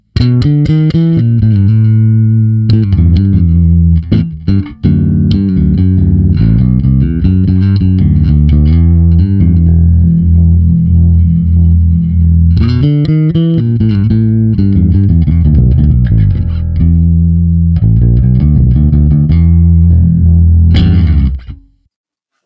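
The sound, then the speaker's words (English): A bass guitar plays a busy line through effects, its low notes thick and steady while the treble edge buzzes with a fizzy, amp-like distortion. No one speaks, and it stops abruptly at the end. “The treble is getting that sort of fizzy, ampeggy sound going on there.”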